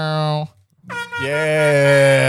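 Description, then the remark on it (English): A loud, blaring air horn sounds twice: a short blast, a brief silence, then a longer sustained honk that holds steady to the end. “You know, can we get an air horn?”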